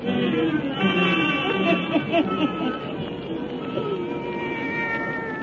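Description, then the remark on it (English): A black cat named Satan meows in long, drawn-out, loud yowls, the wavering cries running almost continuously over a steady low background rumble. “Let us join old Nancy, Witch of Salem, and Satan, her wise black cat.”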